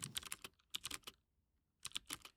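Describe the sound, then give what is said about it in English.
Rapid, crisp clacking of keys on a computer keyboard in two quick bursts separated by a short pause, with no voices. “Holy shit, why am I typing on President Trump?”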